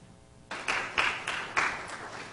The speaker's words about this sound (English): Save that applause.